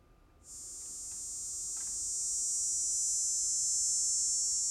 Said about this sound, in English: It's estimated that a trillion cicadas are going to start appearing in late April for about 6 weeks. Now, people living in the U.S. Midwest and the Southeast across 16 states will experience this rare event.